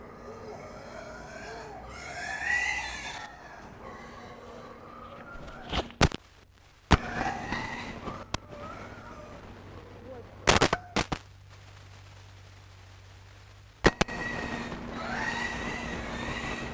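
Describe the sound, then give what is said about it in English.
A pet pig about the size of a small to medium dog squeals in shrill, wavering bursts that come and go, broken up by several sharp knocking thuds and brief quiet stretches. “That's their pet pig.”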